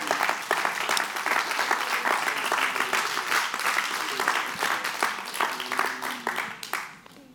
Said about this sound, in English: Clap your hands and tell the Lord, thank you.